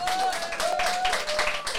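An audience claps and cheers for a couple of seconds after a performer's story, a dense, steady burst of applause with a sustained whoop or whistle riding over it.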